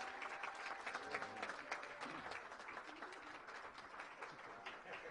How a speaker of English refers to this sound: But please, once again, if you would give the cast a round of applause.